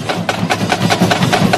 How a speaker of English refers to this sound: That, the sounds of the … at the Met Gala back in 2019.